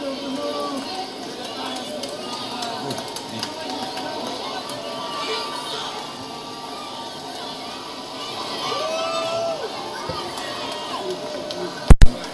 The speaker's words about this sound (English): This capacity crowd stunned and very upset of the image of the heartbreak kid Shawn Michaels. Just look at them.